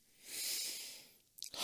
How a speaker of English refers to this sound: Bless you. Whew. And the germs you just spread all over the inside of your shirt that you pulled up to not sneeze on the camera.